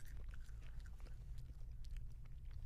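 Crunchy chewing of a chocolate-covered cricket: a rapid, irregular run of small crackling bites and mouth noises over a low steady hum, with no talking.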